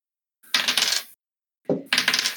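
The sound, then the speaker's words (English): Four six-sided dice being rolled for a damage roll: two bursts of dice clattering and rattling across a hard surface, each lasting under a second with a brief pause between them, bright and fairly loud with no voices. “All right, Alotus, roll me 4d6 plus your strength.”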